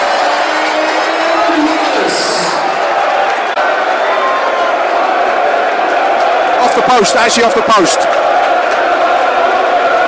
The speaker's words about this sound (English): 1-0, the place is rocking. Well, that's brought the crowd into play. It was just a little moment of getting a little bit into a lull. Lullsville, but not now.